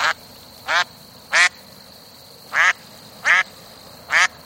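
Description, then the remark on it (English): Ducks quack six times, loud, in two loose groups of three harsh nasal calls, against a steady faint hiss with no talking. “Have you ever watched ducks walking around in freezing temperatures and wondered how they keep their feet from freezing?”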